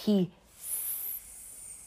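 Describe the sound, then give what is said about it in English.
A brief vocal sound, then a person imitates a snake's hiss: one sharp, airy hiss lasting about half a second, moderately loud, trailing off into quiet. “Yeah, I've got sound effects.”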